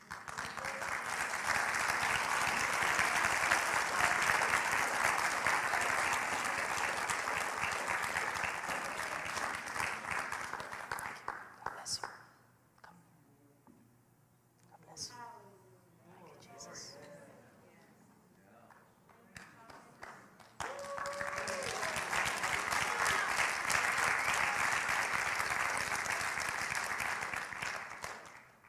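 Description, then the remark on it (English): An audience bursts into loud, sustained clapping for two people who came forward, fading into a quieter stretch of voices and murmuring, then swelling again into a second long round of applause. “Let's clap for them.”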